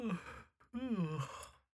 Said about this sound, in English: yawns.